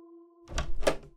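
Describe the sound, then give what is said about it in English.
A door is unlocked and pulled open, two solid clunks in quick succession over a faint steady hum, with no voices. “Just wait there for me and I'll unlock the door.”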